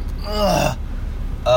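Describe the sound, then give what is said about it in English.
A drawn-out breathy vocal sound rising and falling over about three-quarters of a second, like a yawn, followed by a short pause and the start of another voiced breath. “Sorry, I'm yawning.”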